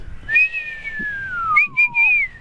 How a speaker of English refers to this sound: Oh, yeah. There's Kitey. So. Give him a whistle.